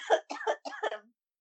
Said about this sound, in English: That's a bat cough right there, man.